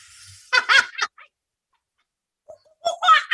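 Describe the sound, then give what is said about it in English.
A person imitates a bird call with their voice, two loud, warbling bursts separated by a short pause, with no other sounds around them. “Were doing bird calls.”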